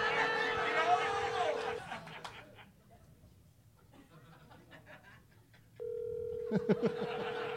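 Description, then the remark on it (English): A phone ringing, heard as two steady electronic ring tones about four seconds apart, with faint murmuring and light laughter underneath. “Oh, my phone is ringing.”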